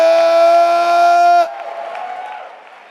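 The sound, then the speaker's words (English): A loud, steady sustained chord cuts off abruptly, giving way to a church audience clapping and shouting to the Lord together, a busy crowd roar that gradually fades. “Clap your hands and give the Lord a shout.”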